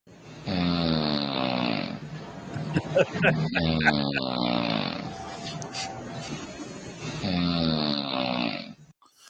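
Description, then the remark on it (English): A sleeping woman snores loudly and steadily, with long, rasping, drawn-out breaths repeating, and some brief clicking noises in the middle, while a toy airplane comes into view. “Instead of explaining to the audio listeners, as she snores, a toy airplane comes into the frame as it goes.”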